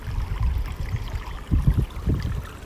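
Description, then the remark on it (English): Water flows steadily with a low, churning rumble and soft splashing bursts, fairly loud, with no voices. “Maybe like this water is drawing you into it.”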